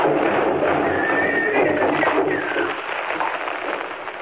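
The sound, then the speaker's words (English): Horses that have torn loose from their traces after their wagon smashed into a rock in the snow and overturned whinny with high, wavering cries over a steady rumble of galloping hooves as they bolt, loud and continuous throughout with a slightly muffled, thin tone, easing a little toward the end. “The horses tore loose from their traces and bolted”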